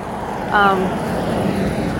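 A car passing by, its engine a steady, loud, broad rumble that fills the whole two seconds, with a brief higher-pitched tonal sound briefly rising over it early on.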